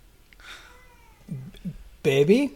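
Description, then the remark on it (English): A baby's cry that sounds much like a cat meowing: two short, soft whimpers, then a louder, strained wail at the end, with faint breathy noise before. “It is a baby!”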